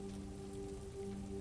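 Soft, steady patter of light rain drizzling as the rain eases up, quiet and even, with a faint low hum running underneath and no voices.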